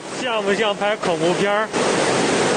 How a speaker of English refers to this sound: It's a sound of floodwaters that have turned the railway tracks into a raging river. Carefully walking along the edge of this tunnel, above the water that's rushing past, are people who have just escaped the train carriage they were in.